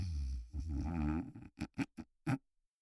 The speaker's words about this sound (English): Shane looks back through to the bedroom. Caroline snores.